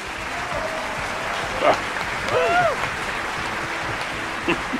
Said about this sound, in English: Thanks for the applause, everybody.